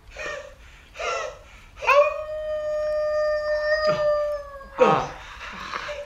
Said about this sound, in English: Night is quickly approaching. There's rain. You're in a forest, a thick forest, and you hear the sound. You're running away from Slevin, who was running away from you, and you hear wolves surrounding you.